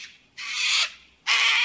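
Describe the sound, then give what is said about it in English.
A large bird lets out two harsh, raspy squawks, each about half a second long, separated by a short pause, with no other sounds around them. “Warning, in this episode there are some sweary swears. And some large birds.”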